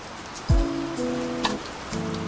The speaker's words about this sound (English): And I got the rain playing in the background because here in Southern California, where they say it never rains, it's actually raining.